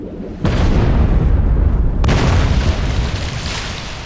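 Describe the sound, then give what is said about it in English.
Two massive explosions, about one and a half seconds apart, each a sudden loud blast that rolls into heavy, sustained rumbling, as two torpedoes launched by the submarine U-21 at 06:45 strike the ship Majestic despite its torpedo nets. “And despite the protective measures taken to prevent torpedoes, such as torpedo nets, both torpedoes hit their target. It created a massive explosion, a dual explosion.”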